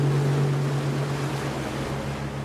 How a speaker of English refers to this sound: We're sailing through the rivers and lagoons of the Mosquito Coast to get to a village called Cobobila